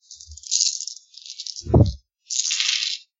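Dice rattle sharply in a cup in three bursts as they are shaken, with a brief thud midway as they knock down, then a final burst of clattering.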